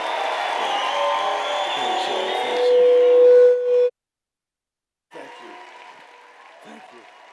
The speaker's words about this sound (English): So let's stand up to our feet and give the wildest cheer for my pastor and my hero, Pastor Bill Johnson. Come on.